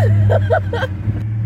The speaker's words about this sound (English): But yeah, it's just a neat old car. Oh God, this is cool.